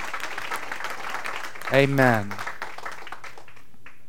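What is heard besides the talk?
audience clapping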